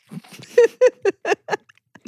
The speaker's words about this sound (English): I like that there's some chewing going on.